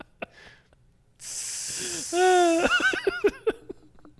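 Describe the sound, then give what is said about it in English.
A voice imitates sizzling, fizzing soda with a sustained, loud hiss that gives way to squeaky, gliding vocal noises and a few short bursts, performed alone with no speech. “It's just like, as his body is smoking. Just sizzling like a glass of Coke.”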